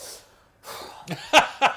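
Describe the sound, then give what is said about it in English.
A breathy inhale builds into a short series of sharp, sputtering bursts, a sneeze with no talking around it. “Bless you”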